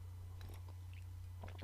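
A couple of soft slurping sips of hot coffee from a person sitting and drinking coffee, brief wet mouth sounds separated by a pause, over a steady low electrical hum. No one speaks.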